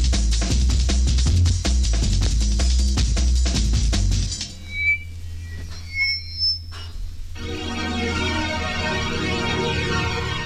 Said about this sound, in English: Someone's whistling over the record.